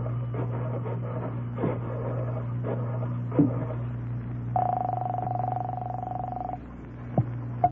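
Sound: telephone being dialed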